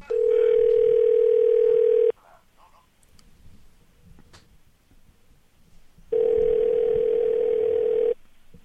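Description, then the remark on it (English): Two long, loud, steady ringback tones of an outgoing phone call, each about two seconds, separated by a quiet pause of roughly four seconds with faint background noise. “I make the phone call. And here it is.”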